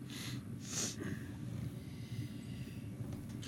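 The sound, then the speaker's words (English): A soft, muffled sneeze from someone with a cold, a short breathy burst, then a quieter nasal sniff, over a low rumbling background. No one speaks. “Bless you.”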